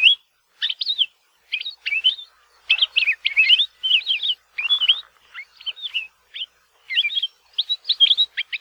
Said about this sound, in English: One of the grad students in our lab at UH Hilo is currently studying the vocalizations of the Palila and has found they have an incredible variety of songs and calls. Here are just a few.